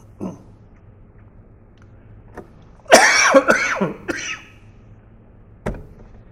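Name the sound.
coughing and throat clearing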